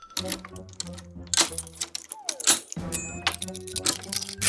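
The lock of a glass door being picked: a quick, irregular run of sharp metallic clicks, scrapes and small jingling rattles, fairly loud, with a faint low hum underneath.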